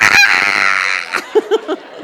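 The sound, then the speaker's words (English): A person imitates an eagle's call with a loud, sustained screeching cry, followed by a few short, clipped chirping yelps, with no other voices. “I should have got a recording, but this is my impersonation of an eagle.”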